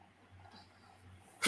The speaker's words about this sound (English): But, oh my God, I'm about to sneeze. God bless you.